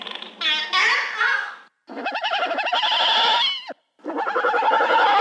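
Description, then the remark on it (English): A horse whinny played backwards at half speed, giving three loud, warbling bursts with short gaps between them and no talking. “They recorded horses, and this is the whinny of a horse played backwards.”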